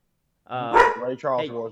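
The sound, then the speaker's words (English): A dog barks and yowls, set off by another dog barking, in a short run of loud, drawn-out, tonal barks, the first one sharpest, with no pause in between. “There's another dog yelling at setting him off.”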